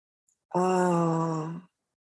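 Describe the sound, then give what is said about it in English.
A single sustained chanted Om mantra as part of a breathing and prayer practice, one steady, resonant voiced tone held for about a second before cutting off cleanly, moderately loud with no other sounds around it. “You can do it with your eyes open and just breathing. Om.”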